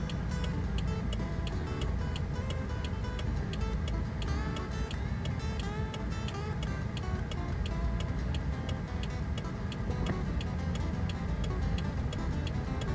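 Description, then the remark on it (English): Steady, evenly spaced clicking of a car's hazard flasher relay, turned on while waiting for a logging truck to back up with a pickup truck behind, ticking on repeat over a loud, continuous engine and cabin rumble with no talking. “Turn on my flashers, so hopefully the pickup truck behind me has a clue of what's going on.”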